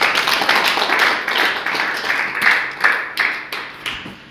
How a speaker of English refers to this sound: Let's clap for the Almighty God.